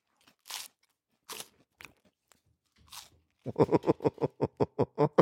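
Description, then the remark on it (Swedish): Close-up crunching food: a few sharp, scattered bites, then a quick, steady run of about a dozen rhythmic chewing crunches, loud and near, with no talking. “Har du tuggar,”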